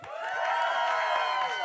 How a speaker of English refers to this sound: Come on, this is a cheer moment. I'm setting you up for it. In February, we celebrate 4 years.